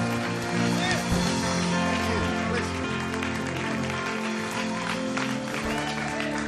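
A crowd applauds and cheers steadily for several seconds, a thick continuous wash of clapping and shouts with sustained musical tones running underneath.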